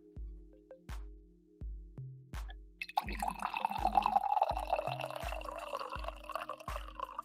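Coffee pours into a cup with a steady splashing trickle lasting a few seconds, over a soft, regular low thumping beat that runs throughout. No one speaks.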